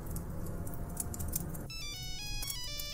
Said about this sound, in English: he heard the faint but unmistakable ringtone of Maggie's phone